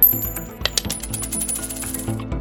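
A coin is flipped and lands with a bright metallic clink, then rings and rattles in a quick series of rapid taps as it spins and settles. No one speaks.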